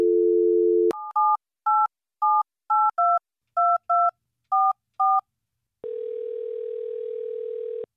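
A brief dial tone gives way to about ten quick touch-tone beeps punched in a steady rhythm, then a continuous ringing tone begins, as a call is placed from the radio station Hot 101.5. The sounds are clear, with no voices.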